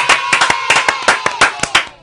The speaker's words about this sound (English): Yay. Why do you clap so loud?